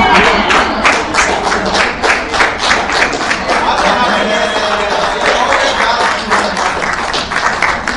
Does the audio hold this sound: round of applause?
yes